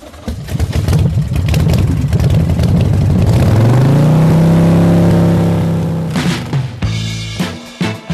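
A motorcycle engine revs loudly, its pitch climbing to a sustained high roar, then easing off before a few quick throttle blips at the end.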